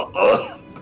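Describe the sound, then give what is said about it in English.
A single short, harsh cough bursts out, loud and raspy with a throaty edge, then fades quickly into quiet. “And you're kind of like coughing in the water.”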